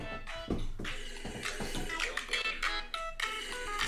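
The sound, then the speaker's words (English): A mobile phone rings with a bright, melodic ringtone, its chiming notes repeating in quick phrases for several seconds, loud, with no one talking over it. “Oh, or my phone could start ringing in the middle of the show because I forgot to mute it beforehand.”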